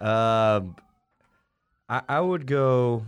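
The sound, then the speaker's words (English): A person vocally imitates a police siren: a loud wailing tone, then a pause, then rising and falling whoops that dip and climb again. “I can hear the sirens hauling me off because of all the fast food I'm going to eat later today.”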